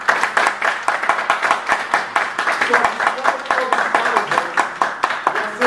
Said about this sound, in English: So first of all, I want each and every single one of you to give yourself an applause. Amen. For being here and not quitting.